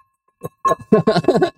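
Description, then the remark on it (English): A bell rings in a quick series of bright, metallic clanging strikes, each blending into a steady ringing tone that lingers underneath. The strikes are fairly loud and come in an uneven rhythm. “we got to ring this bell for that 400K”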